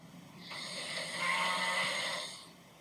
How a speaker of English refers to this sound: You started fucking snoring so loud.